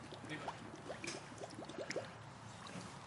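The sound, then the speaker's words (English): Liquid pouring steadily into a bottle during a timed filling race, a quiet gurgling trickle with short rising tones as it fills, fairly soft against low background noise. “Let's fill this thing up.”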